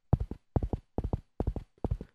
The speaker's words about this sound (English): And sure enough, they galloped on their horses and they ran as quickly as possible.